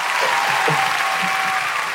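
Steady, dense applause from a crowd welcoming a guest to a movie trivia game, a continuous wash of many hands clapping at once, loud and sustained throughout with no talking over it.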